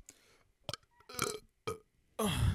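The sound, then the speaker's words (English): A soft burp broken into a few short voiced bursts, ending in a slightly louder, rougher push of air; no talking. “That's about all of my belch.”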